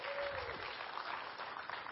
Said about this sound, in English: If you believe that, give God one more hand clap of praise this morning.